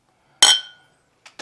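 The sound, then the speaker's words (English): A bright, ringing clink of glasses touching in a toast, clear, its tone lingering briefly, followed by two softer, quicker knocks. No one speaks. “Cheers to that, man.”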